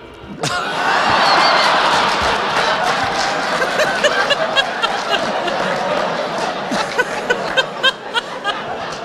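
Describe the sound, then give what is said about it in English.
A crowd in another room boos loudly and steadily, the noise swelling right away and holding for several seconds, with scattered sharp claps or knocks cutting through toward the end. “For those listening at home, the other room just booed.”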